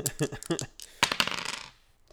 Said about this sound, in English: I need you to roll those dice again. Okay.